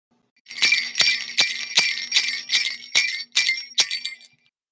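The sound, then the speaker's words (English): Ice rattles against a cocktail glass in a steady run of about nine bright, ringing clinks, fairly loud, with no talking. “Add ice, shake, and pour into a glass filled with ice and garnish with a rosemary sprig, a lime wheel, and some fresh cranberries.”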